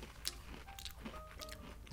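Someone chewing a dry, cream-filled double decker cookie sandwich, with a few brief crunchy, crackling bursts spread over a steady low murmur. No one speaks.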